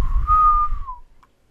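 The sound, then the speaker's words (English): A person whistles a single sustained note, held steady for about a second before sliding slightly downward and fading, with a brief faint chirp after; moderately loud over low background rumble. “You're whistling like...”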